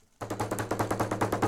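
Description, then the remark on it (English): A voice imitates two fists pounding furiously on a bathroom door: a rapid, steady run of about a dozen loud, thudding beats lasting over a second, with a low hum running underneath. “And it's just like two fists just beating on the door of the bathroom furiously trying to like flag me to get the hell off the toilet.”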